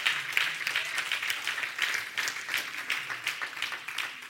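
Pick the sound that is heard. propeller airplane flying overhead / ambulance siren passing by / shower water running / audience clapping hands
audience clapping hands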